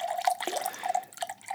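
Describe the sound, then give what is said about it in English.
Eight ounces of liquor being poured into a cocktail before the ice is added, a steady trickling, gurgling pour for about a second and a half with a wavering bubbly tone, moderately loud, with no voices. “8 ounces here. Yeah. So the mother's milk. Give you a little shot of that.”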